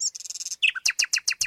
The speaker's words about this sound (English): Many birds sing a little tune to greet one another, like this.